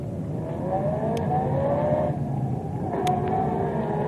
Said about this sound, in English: Say, that's funny. What funny, Tuan Jim? That car that just passed us. It's disappeared.